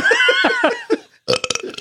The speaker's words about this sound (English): I'm going to burp again.